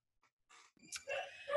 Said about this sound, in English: I'm good with my dog who's barking in the background.